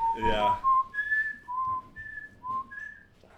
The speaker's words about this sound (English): Yeah. That's me whistling. Yeah. You can talk and whistle at the same time.